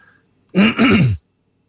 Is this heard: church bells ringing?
no